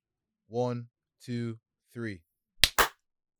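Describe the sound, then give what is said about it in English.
A voice counts out three short beats, then two sharp, loud hand claps land a split second apart, a sync clap for the editor while recording that didn't quite line up. “We already did the intro, but let's just clap again just for the editor. So on clap on three.”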